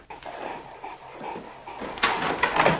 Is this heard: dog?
yes